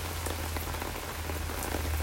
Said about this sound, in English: I just answered about 40 emails before coming out to the portable, the disposable hot tub to give you a special little recording in the rain.